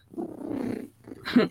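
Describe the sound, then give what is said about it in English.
A person imitates a cat's purr with a low, rolling throaty rumble lasting nearly a second, followed by a shorter, breathier rasp. Moderately loud, with no words spoken. “Baby, when I'm purring, I'm happy.”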